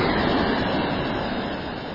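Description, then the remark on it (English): A steady, broad, loud roar of water pouring continuously over a weir on the River Derwent, a tributary of the River Trent in Britain, fills the whole clip with no pauses or distinct events. “And what you can hear in the background is a weir, is the water rushing over a weir.”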